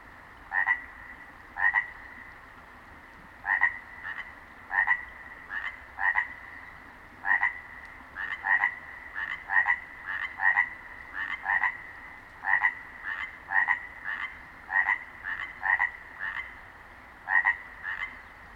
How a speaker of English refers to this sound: So I unroll my foam pad, crawl into my sleeping bag, and drift into dreamland, with chorus frogs singing and dancing in my mind.